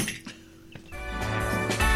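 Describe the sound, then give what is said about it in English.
A couple of sharp metallic clinks as keys are dropped as a mic drop, followed by music with sustained tones and a steady beat that swells in and carries on loudly. “And hold on, I need to sort of need something to drop.”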